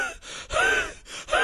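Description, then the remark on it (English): A voice imitates heavy, loud breathing: a few rapid, rasping gasps, each in-breath harsh and strained, repeating in quick succession with no words. “You're breathing too heavy.”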